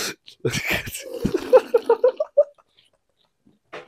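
Someone slurps a drink: a few wet sucking bursts, then a quick run of five or six rhythmic gulping pulses before it goes quiet.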